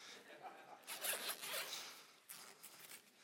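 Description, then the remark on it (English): A bag zipper is pulled open in a few quick, rasping strokes, bright, with brief pauses between tugs and no one talking. “If I find the right zipper.”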